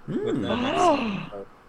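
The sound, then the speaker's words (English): A loud voiced gasp, drawn out into a theatrical exclamation that rises and falls in pitch for about a second before trailing off, with no other sound around it. “Gasp.”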